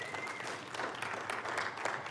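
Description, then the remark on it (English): An audience applauds steadily, a dense, continuous patter of many hands clapping at moderate volume, with no voices rising above it. “You can clap for that.”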